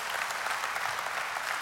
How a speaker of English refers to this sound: Can we give God a round of applause for that in the last year?